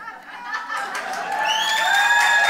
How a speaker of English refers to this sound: You know, that's not why I said that. I didn't say that to get an applause, but I mean, you know, I'll take it.